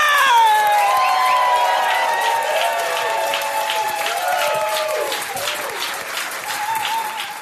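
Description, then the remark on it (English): Loud, sustained audience applause for comedian Sam J at her album taping in New York, dense clapping mixed with whoops and high-pitched cheers rising and falling over the crowd noise, continuing steadily throughout. “Please put a big round of applause. Start clapping up, clap it up, clap it up to my girl, Sam J.”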